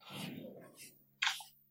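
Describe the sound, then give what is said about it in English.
A single quick hissing spritz from a spray bottle of water, sprayed on hair during styling, a sharp airy burst that fades fast, following a stretch of low, muffled rustling and murmur. “What'd you just spray? Was that more water?”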